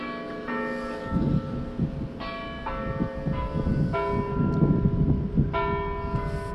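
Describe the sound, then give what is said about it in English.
A large town hall bell in a UK town centre tolls the hour at 11 a.m., repeatedly at a slow, steady pace, each deep ring leaving long overlapping harmonics, heard outdoors over a low murmur of town traffic. “Oh, there's the town hall bell.”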